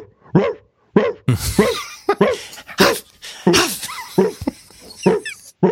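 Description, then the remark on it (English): A penned dog on the other side of a fence whimpers and yips in a rapid, insistent series of high-pitched cries, fairly loud, with short pauses between bursts and no other voices. “way that I cannot see, but that the penned dog right on the other side of the fence is very aware of.”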